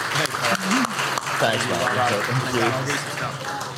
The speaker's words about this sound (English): Round of applause.